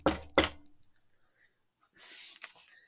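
Two firm knocks on a door in quick succession, followed by a pause and then a soft rustling, scraping noise like the door being opened.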